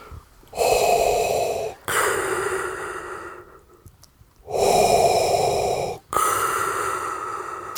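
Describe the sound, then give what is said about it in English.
A voice imitates Darth Vader's heavy, rasping respirator-mask breathing: two slow inhale-exhale cycles, loud, each breath hissing and mechanical-sounding, with a brief quiet gap between them and no talking. “You guys know, he just added an audio of the real Darth Vader breathing.”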